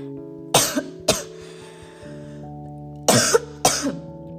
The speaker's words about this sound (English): Sorry guys, since it's getting colder, I'm getting a bit cough, but I'm okay. It's just the weather.